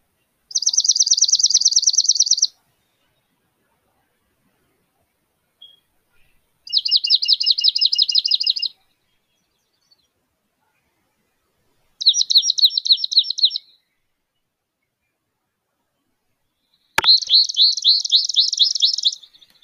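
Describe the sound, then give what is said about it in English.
Four separate bursts of high, rapid trilling birdsong, each about two seconds long and separated by clear pauses. The songs are fairly loud, with no talking. “I think the second one is the one that best describes who this bird is.”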